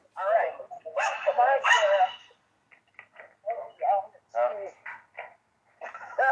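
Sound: dogs barking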